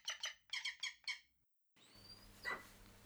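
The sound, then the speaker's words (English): Hunting birds in a gaudily decorated room that doubles as their mews give a quick run of five or six shrill, squeaky calls. After a short silence, a hushed room tone follows, broken by one brief, faint cry. “A Turkish guard leads Thurstan into a gaudily decorated room, which doubles as a mews to the hunting birds.”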